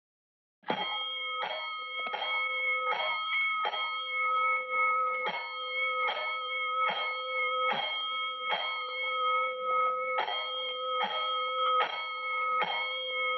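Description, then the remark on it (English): Fire station alarm bells ring out loud in a steady, rapid series of metallic strikes, five bells sounding for a fire alarm, each tone hanging and overlapping the next without a break for the whole stretch, no voices. “Five bells. Stand by all stations. Attention, all districts. A fire alarm fire.”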